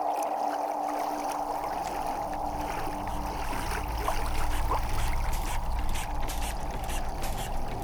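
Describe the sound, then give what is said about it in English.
An old boat engine with large pipes, valves and wheels drones steadily and loudly throughout as a man tends to it, a rough, continuous mechanical rumble with a constant whine and faint watery splashing beneath it. No one speaks. “She's cleaning up after breakfast, and he's tending to the boat's noisy engine.”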